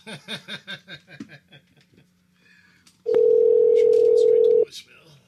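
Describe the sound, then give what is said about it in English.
Laughter bubbles up at first, then a single loud, steady telephone ring tone sounds on an outgoing call for about a second and a half before cutting off, with faint background noise beneath. “Ringing is a good sound. One ringy dingy. Two ringy dingies.”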